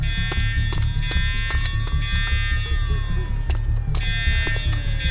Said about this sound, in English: That fucking alarm.